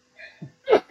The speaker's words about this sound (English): sorry, excuse me. Jesus Christ. Bless you.